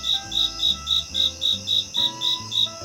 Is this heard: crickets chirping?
yes